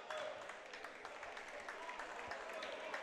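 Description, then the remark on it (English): The Tigers basketball team claps in a steady, scattered patter for about three seconds after a foul on a rebound during a game, the sharp hand slaps blending into a constant wash of crowd noise with faint voices murmuring underneath. “Tigers are clapping, so it's going to be on Worcester.”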